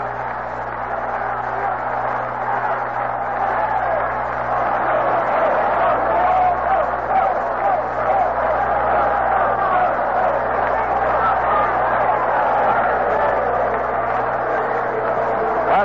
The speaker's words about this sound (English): Yates Brown getting a cheer as he comes to bat now.